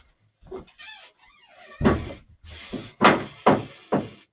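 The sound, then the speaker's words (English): A door creaks with a warbling, squeaky groan, then several loud wooden thunks follow at irregular intervals as it is pushed shut and wedged with a rock. No one speaks. “Apologies for my door creaking, by the way.”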